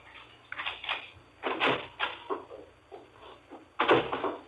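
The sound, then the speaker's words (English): A front door being opened as a man comes in from the walk outside: a short series of clattery knocks and latch rattles, with a louder burst near the end, and no voices. “heard him chuckle, then his steps up the walk to the front door.”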